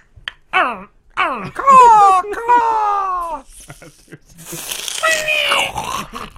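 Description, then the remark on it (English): A person imitates a velociraptor call: a few short, sharp squawks, then a long wavering shriek that slides downward, ending in a raspy, hissing screech. No other talking. “You know, it's like that noise that they would make, and then they...”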